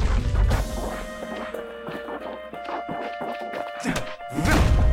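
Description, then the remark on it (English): Crates, a market stall and walls being smashed with a hammer: a rapid, irregular series of heavy thuds and cracking crashes, with deeper booming impacts at the start and end over a steady humming background. “Oh, we're just smashing through everything. Walls.”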